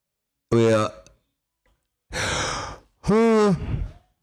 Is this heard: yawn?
yes